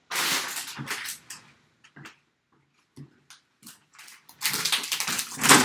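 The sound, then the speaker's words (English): Bubble wrap popping underfoot: dense bursts of sharp crackling at the start and end, with scattered single pops in between. It's loud, with no voices. “Were you stepping on bubbles? Bubble wrap.”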